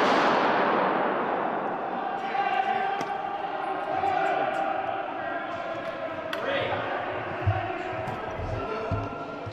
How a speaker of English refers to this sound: That bang was the gunman's last shot. What follows are the shots that killed him.